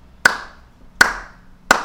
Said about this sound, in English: He walks in between the shells, thinking of his dead fiancée, when he hears someone clapping.